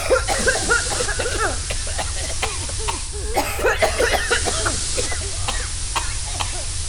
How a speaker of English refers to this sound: led the coughing, choking crew to the doctor's lab, which at least has oxygen tanks in it.